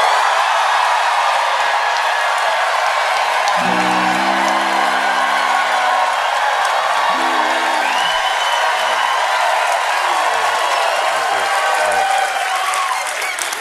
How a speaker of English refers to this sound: You see the people cheering, clapping, and it's like, just because they don't like one man, they don't really see what's going on.